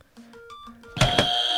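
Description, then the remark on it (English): A few short electronic tones play a simple tune, then a red buzzer is hit with a sharp click and a loud, bright, sustained electronic tone that rings to the end. “Move the crisp packets because then man need to see the red buzzer.”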